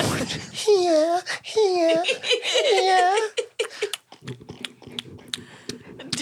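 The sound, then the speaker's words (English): A dog licks right against the microphone, a string of close, wet smacking clicks, preceded by high, wavering giggle-like vocal sounds for the first few seconds. “Hey guys, Welcome to the dog licking ass.”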